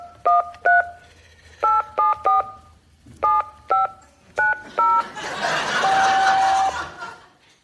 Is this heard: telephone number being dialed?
yes